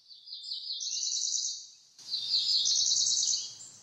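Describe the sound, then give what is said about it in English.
Two high, buzzy song phrases of a cerulean warbler, a small songbird of the warbler family about 4.3 inches long, each a quick run of thin notes climbing into a rising buzz, clear; a soft hiss of background noise enters with the second phrase. “Today's In Nature segment is about the cerulean warbler”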